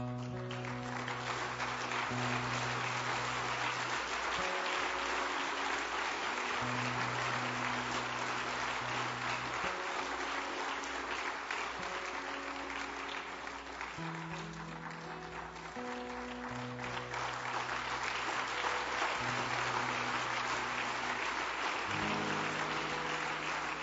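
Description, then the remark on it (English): Sustained applause from a large crowd at a religious service, as people come forward to the front, fills the whole stretch, steady and dense, with music playing underneath in held organ-like tones. No voices stand out. “They go, why are they clapping?”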